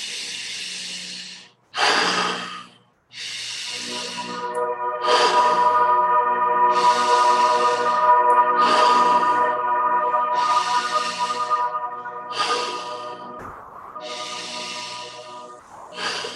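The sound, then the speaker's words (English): A person doing a deep breathing exercise: a run of deep, steady breaths, each long inhale and exhale rushing with an airy hiss, repeating in an even rhythm with short pauses between, over a faint low hum. “Nice deep breathing.”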